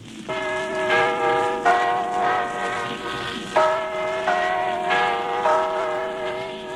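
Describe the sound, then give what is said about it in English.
The Big Ben bell, in a recording from 1890, tolls about five times, each strike blooming into a long, resonant ring of layered overtones, heard through the steady hiss and crackle of the very old recording. “Now that you know, check out this old recording of Big Ben, which is not a person, not a clock, not a tower. It's a bell.”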